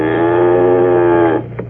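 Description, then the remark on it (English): A single long, loud moo from a cow, a steady low bellow held for over a second before trailing off, with no one talking. “No, that's just my cow peeking in the door.”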